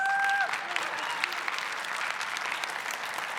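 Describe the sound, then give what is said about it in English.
Steady applause from an audience during a sermon, a dense crackle of many hands clapping at a fairly even level for a few seconds, opening with a brief high tone that cuts off. “You can clap for the four of you who did, thank you.”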